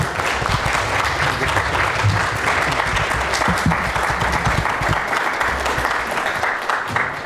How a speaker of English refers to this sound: I do want you to welcome Sheila Smith with your applause and say thank you for coming.